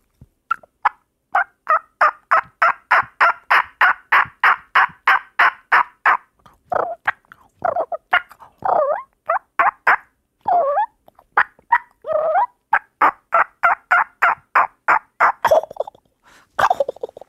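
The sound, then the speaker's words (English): A person mimics a wild turkey with their voice alone, using no call or diaphragm, starting with a long run of rapid, evenly spaced clucks, then warbling gobbles and yelps, loud, with no talking. “Hit me with a beautiful turkey call.”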